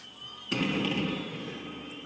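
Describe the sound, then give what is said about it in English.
A single sharp, loud retort bursts out half a second in over an excited crowd at sunset, then rolls into a long, rumbling decay that lingers over a faint, steady high-pitched whine. “A sharp retort, like the crack of distant thunder, slices through the excited crowd as the sun's setting rays paint the western sky.”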